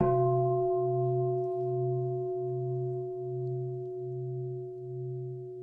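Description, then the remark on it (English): A mindfulness bell is struck once and left to ring, its steady, resonant tone sustaining for several seconds with a slow, wavering pulse in the low hum. No one speaks. “Now, you know, we think the mindfulness bell has to be this.”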